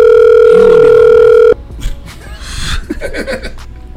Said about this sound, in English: Alright, so I guess I'm calling this nigga answering the phone.